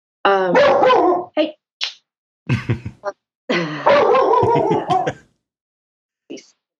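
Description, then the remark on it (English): A dog barks in a few loud bursts, some drawn-out and yowling, others short sharp yips, separated by brief pauses with no one talking. “He's a cool looking dog.”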